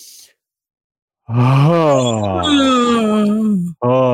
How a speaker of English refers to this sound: Again, inhale. Making me yawn. Yeah, you can yawn.